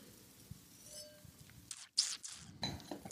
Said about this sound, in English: I'm going to take another sip because I got it in front of my mouth and I got a microphone in the other hand and a glass in one. Here I go.